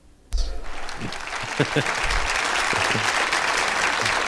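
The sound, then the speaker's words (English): A burst of applause starts abruptly and continues as a steady, dense wash of many hands clapping at once, loud, sustained for several seconds. “Wow, an applause break is just like a lot of high fives all at once.”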